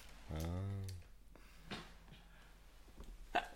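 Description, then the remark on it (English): A single sneeze: a drawn-out voiced inhale, then a short sharp burst of breath. A faint, brief noise follows in otherwise quiet surroundings. “Bless you.”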